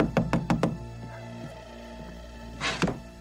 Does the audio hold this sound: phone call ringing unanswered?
no